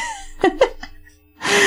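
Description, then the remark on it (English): Two quick, soft vocal catches are followed by a brief pause, then a sharp, breathy sniff that rises loud and hissing at the end. “Also, that was a sniff.”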